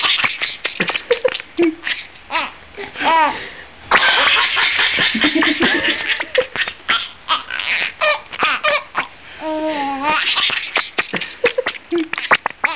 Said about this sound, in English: when you see him tickle the rat and the rat kick its little rat legs and chirp like mad, it does look like the animal's cracking up. Like a little kid.